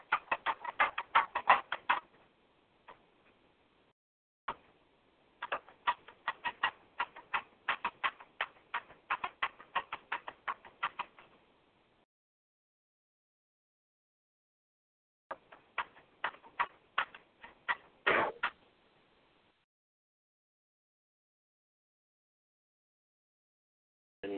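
Rapid, irregular clacking of keys on a keyboard, coming in several bursts of typing separated by pauses of silence. The clicks are fairly faint and there is no talking.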